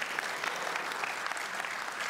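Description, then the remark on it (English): A crowd at a church service claps steadily for the band, a dense, continuous patter of many hands at moderate loudness, with no voices standing out. “Before I move forward, I'd love if you would give a round of applause for our band really quick.”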